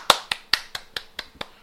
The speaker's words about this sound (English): rarely do I get on air, guys, and I give you a round of applause